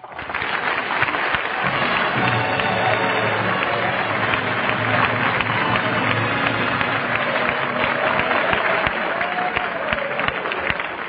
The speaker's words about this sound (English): That was a wonderful introduction, by the way. But why should I get all that applause? Well, the Ohio football team is in the audience. They know a good formation when they see one.